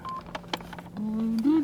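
A short electronic phone keypad beep from someone texting, followed by a few sharp tapping clicks, then a steady low droning tone that rises slightly in pitch toward the end, fairly loud throughout.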